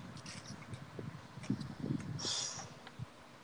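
Low, gusty rumbling with uneven buffeting bursts over a steady hiss, plus a brief brighter hiss near the end, like wind blowing across a phone microphone. Fairly quiet, with no talking.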